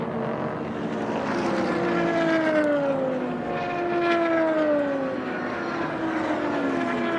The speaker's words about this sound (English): That was P2 cars going through, by the way, just in case you would.